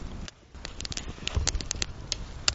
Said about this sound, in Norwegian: Nå brenner vi opp sekken.